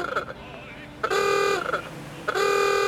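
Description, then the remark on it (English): The horn of a Bentley coupe car, 4.5 liter with a Wayman body, blares twice in close succession, two loud, sustained honks about half a second each, with a fainter short toot just before them and a low background murmur. “That, my dear, is a Bentley coupe.”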